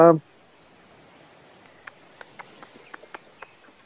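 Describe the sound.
A voice imitates scissors snipping with a quick series of about seven sharp, fairly crisp mouth clicks, following a brief vocal sound at the start, while pretending to cut a customer's hair in a salon.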